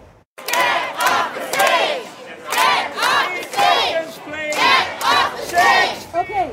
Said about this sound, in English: A handful of anti-maskers were shouted down when they tried to disrupt a teacher's COVID safety rally in Vancouver this afternoon.